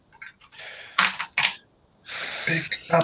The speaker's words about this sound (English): I have physical dice in front of me. All right, well then just roll three D6s.